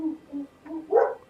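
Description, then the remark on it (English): A dog barks a few times, short low woofs followed by a louder, sharper bark near the end, with no talking over it. “There's probably someone walking a dog outside.”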